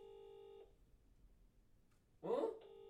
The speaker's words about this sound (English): you need to answer the phone, please.